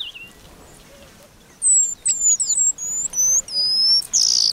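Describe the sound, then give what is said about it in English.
Calls of an eastern paradise whydah, a small East African finch about 5 inches long: a quick series of thin, high whistled chirps, clear, ending in a louder buzzy burst after about a second and a half of quiet. “A few times each year, the eastern paradise Wida puts on its party clothes. This small finch, found in East Africa, is just 5 inches long, with a black tail, brown back, and patterned face markings.”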